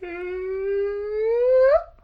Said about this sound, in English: That was an awesome yawn.